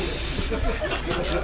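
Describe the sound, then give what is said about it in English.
A person hisses loudly and steadily into the mic, a sharp, airy sound imitating an angry cat, sustained for about a second and a half. “Let's hiss at them. That seems appropriate, right?”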